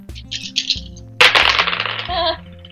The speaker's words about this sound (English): Those were loud dice.